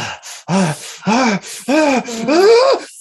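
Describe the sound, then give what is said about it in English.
A voice imitates a woman panting heavily as she grabs a sword, with four loud, breathy, voiced gasps in quick succession, each swelling in pitch and then falling away, with no other sounds. “And she grabs it and she starts panting heavily.”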